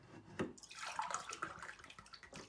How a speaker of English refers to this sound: So I'm gonna grab a mug. I'm gonna place it on top of my upside down bowl and I'm gonna fill it with water. So I'm using this as a weight.